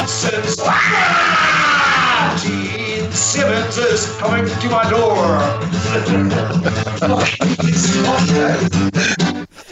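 Loud, spontaneous shouting and screaming from several people, with a long rising yell near the start and overlapping excited whoops continuing throughout.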